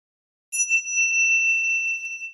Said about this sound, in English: There's a bell at the front of most vocal sessions. It's part of the timer process.